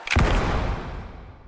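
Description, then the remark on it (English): A single loud gunshot, fired in a theatre during a play as the audience laughs, cracks out sharply, then its echo rumbles and fades slowly over the next second. There is no voice, only the blast and its lingering decay. “As the audience erupts, the sound of a single gunshot rings out.”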